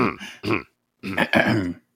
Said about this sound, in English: I clear my throat all the time. I'm not the best audio medium person. It's not my fault I have a deviated septum.